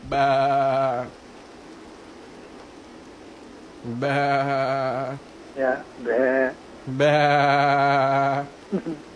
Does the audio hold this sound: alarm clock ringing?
no